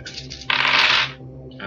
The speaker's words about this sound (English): It is 4. Okay, roll 4 dice.